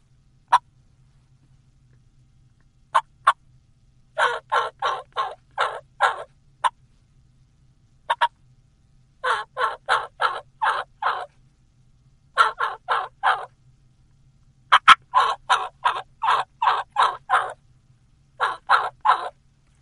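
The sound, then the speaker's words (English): Deep, slow gobbler yelps played on a turkey call in clear runs of five to seven notes, separated by single sharp clucks and brief pauses, with no talking. “If you add some gobbler yelps, and gobbler yelps are like hen yelps, just slower in cadence, deeper in tone, like this, and deeper clucks.”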